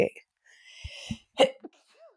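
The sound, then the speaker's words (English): A single sneeze, with a breathy, hissing build-up followed by a sharp, loud burst, then a brief trailing sound before it goes quiet. “Bless you.”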